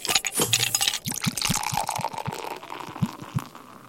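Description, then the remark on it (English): Red wine, a glass of Merlot, glugs steadily into a glass, fairly loud, with a rapid series of low gurgling pulses as the liquid pours, no voices over it. “Right, I've brought along with me this week a very tasty glass of Merlot.”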